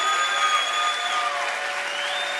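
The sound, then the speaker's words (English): An audience applauds with dense, steady hand clapping that holds at an even loudness throughout, with faint sustained tones running underneath and no voices. “I want you to give him a hand clap like he deserves right now.”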